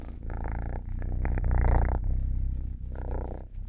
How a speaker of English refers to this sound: Can you hear this cat absolutely purring?